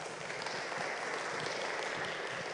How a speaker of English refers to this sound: So if you would, please give him a round of applause and welcome him with a warm welcome.